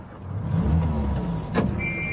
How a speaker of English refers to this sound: No, wait. Switch that engine off.